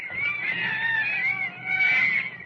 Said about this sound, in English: Oh, listen to those monkeys chatter.